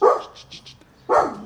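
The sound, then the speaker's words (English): A female dog barks twice, loud, with a short pause between the barks and faint softer sounds in the gap. “She's gonna start barking at everything.”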